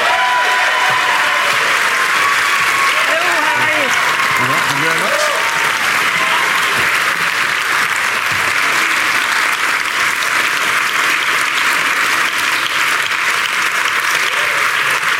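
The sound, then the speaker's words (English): A large audience claps loudly and steadily for about fifteen seconds to welcome Nicola Sturgeon, SNP leader and First Minister of Scotland, a dense wash of applause with scattered cheers and murmurs mixed in, staying at full strength throughout. “Please give a rousing welcome to Nicola Sturgeon.”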